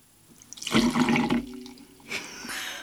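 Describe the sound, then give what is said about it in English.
A short burst of gin, about 1 ounce, poured into a small measure, with a rising tonal gurgle for about a second, then a second brief trickle and a small clink at the end. Fairly clear. “So let's just pour whatever's left in here. That's approximately 1 ounce.”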